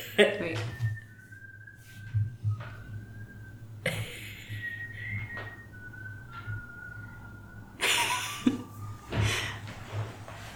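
Someone whistles a simple tune of short, steady notes, with brief bursts of noise and a low hum running underneath.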